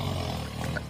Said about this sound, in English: That sound is the guy snoring, by the way.